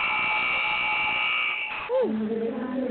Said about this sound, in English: Got that buzzer sound. That's the end of the Kettering and basically John Glenn game.